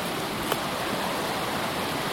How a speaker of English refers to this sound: Oh, this is so pretty. I don't remember if I've been through here where the creek has been so high. It's really nice. Is that too loud? It's so pretty.